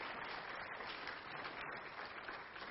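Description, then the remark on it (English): Sustained applause from a worship service audience for the VBS workers, a dense steady wash of many hands clapping at an even loudness for a few seconds, with no voices standing out. “Just kind of give these guys a round of applause, man.”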